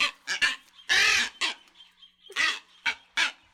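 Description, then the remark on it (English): Harsh, honking calls of a booby at the nest in Hawaii, a string of short loud squawks, with one longer drawn-out cry among the quick bursts; this nesting call, 'A', is the birds' Hawaiian name. “A is a sound they often make when nesting, and it's also the shortest name for any bird in the world.”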